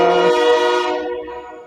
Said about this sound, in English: Like a train.